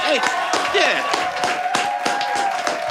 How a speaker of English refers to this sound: Clap for my man.